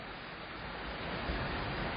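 Rain falls in a steady, even hiss that fills the whole two seconds, growing slightly louder toward the end, with no voices or other sounds.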